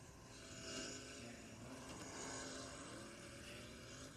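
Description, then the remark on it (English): A race car engine in the video game NASCAR 20 Daytona roars steadily throughout, swelling slightly as it accelerates, a continuous droning rev with no voices over it. “Stepping on the gas.”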